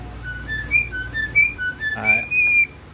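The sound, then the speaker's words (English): A starling whistles a quick run of rising and falling beeps and warbles imitating R2-D2, sounding like a chirping robot, loud, with a brief buzzy burst partway through. “How about when he did R2-D2?”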